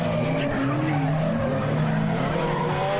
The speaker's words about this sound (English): Drifting is the art of driving a car sideways. And it is an art. It's balance, and it's almost poetry with cars.